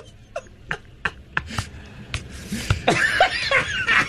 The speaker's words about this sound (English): You're making me cough. That's not good.